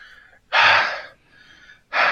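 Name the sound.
heavy breathing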